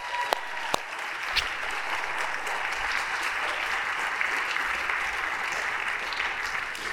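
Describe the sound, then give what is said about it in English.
An audience applauds steadily for the full seven seconds, a dense, even wash of clapping with a few sharper individual claps near the start and no voices standing out. “Can we give these guys a huge round of applause?”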